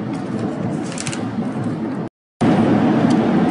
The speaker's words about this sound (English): So I just listened to the first safe, which we did, and I understand there's a lot of background noise, obviously, from the plane. I don't want to fall behind, so please bear with me through that noise today.